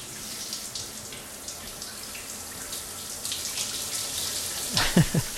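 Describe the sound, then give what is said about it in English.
Someone urinates while taking a shower, a steady hiss of falling water with a trickling stream mixed in, ending in a brief louder splashing burst. “This is called shower peeing, which I can only assume is the sound of him peeing while taking a shower.”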